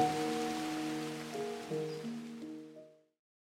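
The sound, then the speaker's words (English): A steady, soft hiss of falling rain fills the background while gentle sustained piano chords play over it, then everything fades out to silence after about three seconds. “Calming Piano Music with Rain Sounds”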